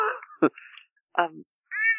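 A cat meows several times in quick succession, fairly loud, with short wavering cries separated by brief pauses and a longer, higher meow at the end.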